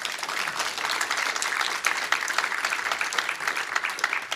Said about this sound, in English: So a big round of applause to my guest.